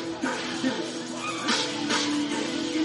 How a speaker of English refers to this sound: Fourth down, it looks like they're going to go for it, but wait, we're having a coach's change of mind, so all the coaches talk things over and the Wildcat growls, which, yeah. It's like Bryant Denny here, guys.